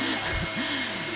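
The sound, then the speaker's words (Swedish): A gas-powered leaf blower in the USA, run by a man, drones steadily, a loud, continuous whooshing roar with a low engine hum whose pitch wavers slightly throughout. “Nej, det är ju en lövblås.”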